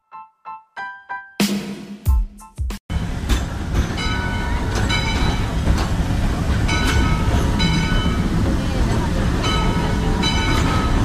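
A few short electronic chime tones, then a loud train rumbles steadily along the rails, with a faint rhythmic clacking running through the continuous roar.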